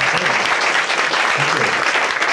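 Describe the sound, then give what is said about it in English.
A live audience applauds steadily, dense clapping blending into an even, loud wash of sound with no pauses for the whole stretch. “We have a round of applause for that.”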